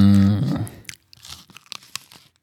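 A short, low, droning tonal sound fades out, then irregular wet crunching bites and chewing follow, crisp snaps coming in quick uneven bursts, like someone eating a crisp apple.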